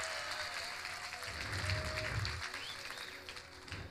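Steady applause from an audience for a keyboard player, a dense wash of clapping hands that holds at an even level for a few seconds with no talking over it.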